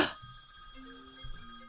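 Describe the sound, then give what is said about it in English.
A phone rings for an incoming call from Sarasota, Florida, with a bright, electronic trill, its tone steady, sounding alone without any voices over it. “Uh-oh, interruption. Whose phone? Your phone.”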